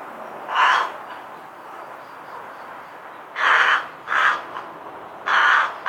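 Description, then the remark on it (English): A rook gives four rough, raw caws, one early, then three spaced over the last few seconds, each harsh against a quiet, faintly hissing background. “Their main call is rough, raw, and I think deeper than that of a carrion crow.”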